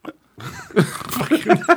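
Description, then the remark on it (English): A voice imitates sleeping with the hiccups: a short grunt, a pause, then a rough snoring breath broken by several sharp, hiccup-like yelps. “How would you sleep with the hiccup? Like this?”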